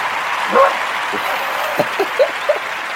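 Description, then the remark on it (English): A female dog, startled by her owner sitting at the table and talking to himself, lets out a handful of short, high barks and yips, spaced irregularly over a few seconds, set against a steady background hiss. “I just freaked out my dog because she's not used to me sitting at the table and talking to myself.”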